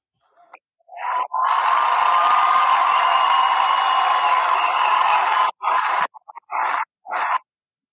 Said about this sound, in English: Who's cheering? These sound effects, y'all are gonna hate me.